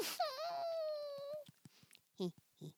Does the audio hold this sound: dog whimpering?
yes